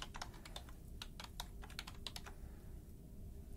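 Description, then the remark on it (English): Quick, irregular clicks of typing on a computer keyboard as someone enters information into the computer, a burst of keystrokes for about two seconds that thins out toward the end, over a low steady hum. No one speaks. “Let me enter this into the computer.”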